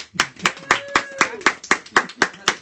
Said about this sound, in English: That was the easiest applause I got this entire podcast.